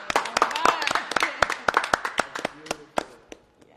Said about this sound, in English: you got to clap for that one. Yes.